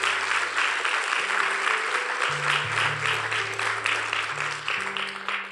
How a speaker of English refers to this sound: But would you just give our staff and our senior pastor a round of applause really quick and thank them?